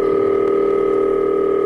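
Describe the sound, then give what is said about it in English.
A telephone is being dialed: a loud, steady electronic two-tone touch-tone sound holds unbroken for under two seconds, with no voices. “One evening, he called Johnny Carson at home and actually got him on the phone.”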